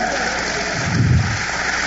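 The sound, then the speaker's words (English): A crowd claps steadily in response to a preacher's call during a sermon, a dense crackle of many hands blended into a continuous wash of sound, swelling slightly in the middle before holding level to the end. “You taking, come on, clap your hands on that.”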